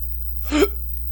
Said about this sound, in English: I got hiccups. Ain't that nice.